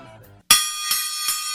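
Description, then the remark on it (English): A gong in a studio is struck three times in quick succession, each loud metallic hit ringing on with a bright, shimmering sustain. Soft low music fades out just before the first strike. “That gong was missing.”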